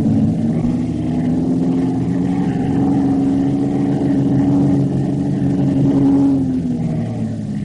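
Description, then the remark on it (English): A reconnaissance plane's engine roars steadily as the plane dives down toward something in the water along the coast, a loud, continuous low drone whose tone swells slightly and then drops away near the end. No one speaks. “Let's get this plane back to base.”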